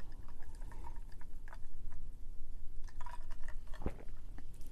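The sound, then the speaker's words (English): Someone sips a drink: soft wet slurps and small liquid clicks scattered over a low rumble, with one sharper gulp near the end. Nobody speaks. “Take another sip here.”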